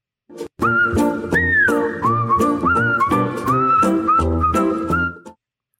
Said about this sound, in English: As you are whistling along